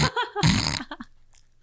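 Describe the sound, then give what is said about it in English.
A voice imitates snoring from sleep apnea: a short throaty grunt, then a loud, raspy, rattling snort that trails into a few softer gasps and a brief quiet pause. “I'm snoring, okay? Sleep apnea.”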